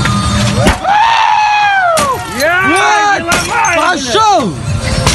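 A man smashes a car with a sledgehammer in a parking lot in Yamal-Nenets, northern Siberia: he breaks the headlights, then jumps onto the bonnet and hammers through the windshield. Four heavy, spaced-out blows crack and shatter glass, with loud, strained yelling between the strikes.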